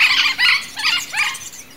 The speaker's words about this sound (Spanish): En el 97, este loro parecía estar extinto, pero un número pequeño sobrevivió en las altitudes de los Andes y lo encontraron allí en el 99. Y desde hace unos años, sus números han incrementado en bosques templados y subtropicales.